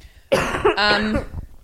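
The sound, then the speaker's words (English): A single harsh cough breaks into a raspy, whistling wheeze as the breath is pulled back in, heard on its own with no talking. “Someone commented on my wheezy cough.”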